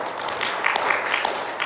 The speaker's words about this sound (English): And what a great youth service last Sunday. Wasn't that a great youth service? Can we give them a round of applause?